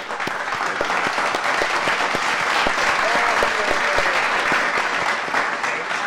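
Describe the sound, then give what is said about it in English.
A steady round of applause for the Boot Girls, women who remove car boots, with dense clapping that holds at an even level for several seconds and faint cheering voices mixed in underneath. “I want to give a round of applause.”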